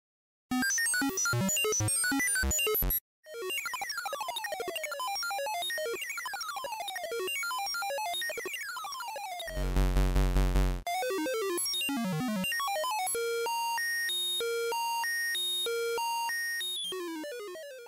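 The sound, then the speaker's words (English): Loud, chaotic electronic arcade video game sound effects play without pause: rapid falling pitch sweeps, a harsh buzzing blast midway, then quick stepping beeps, all jumbled together like an alarm going off. “We'll play some of those sound effects for you guys now.”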